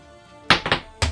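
Dice are rolled onto a hard surface with a quick run of clattering knocks, three or four sharp taps close together, then one more thud as they settle. No one speaks.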